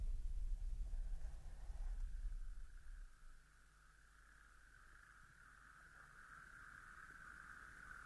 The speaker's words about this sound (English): I can hear something over there. Yes, there's a good population of toads just calling in the pond. Those are the toads? Yeah, that's right.